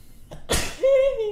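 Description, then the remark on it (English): A single sneeze: a quick intake of breath, then a sharp, explosive burst of air, trailing into a brief drawn-out vocal sound. “I have to sneeze.”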